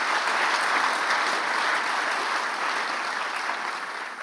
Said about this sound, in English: Give the Lord a clap offering in this house today.